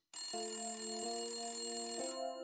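A telephone rings loud, a steady electronic trill with tones that restart three times in quick succession, heard alone with no voices; a phone call placed from a locker room.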